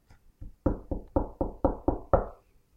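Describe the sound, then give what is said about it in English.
Rapid knocking on a door: two soft taps, then six loud, evenly spaced raps in a steady rhythm, with no voices. “Now, somebody's going to come a knocking.”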